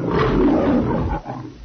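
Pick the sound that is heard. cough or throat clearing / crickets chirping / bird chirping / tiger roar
tiger roar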